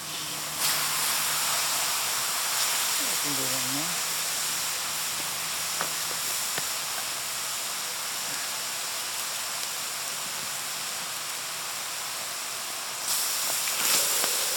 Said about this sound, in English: pours some water into the bowl, and then, very carefully, adds the rocks from the fire.